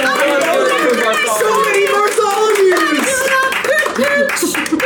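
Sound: hands clapping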